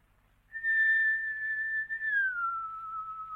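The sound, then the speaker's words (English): A person whistles a long, steady tone that slides down to a lower sustained pitch, clear and fairly loud against faint background hum, calling a pet named Bomba. “I will whistle for him.”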